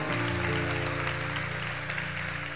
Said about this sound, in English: And I am excited about it. If you're excited about it, clap your hands.